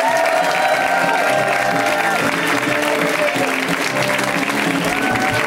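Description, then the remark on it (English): A comedy show audience applauds steadily to welcome writer and stand-up comic Mike Drucker on his first time on the show, with dense clapping, cheers and a few whoops rising over it, sustained and loud throughout, with no pause in the noise. “We give them a huge round of applause.”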